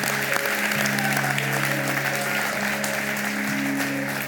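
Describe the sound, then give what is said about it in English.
An audience claps steadily, a dense wash of many hands sustained at an even loudness for several seconds, with faint sustained organ or keyboard tones underneath and no talking. “Clap.”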